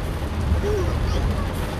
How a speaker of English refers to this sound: There's like a torrential downpour. It's fine.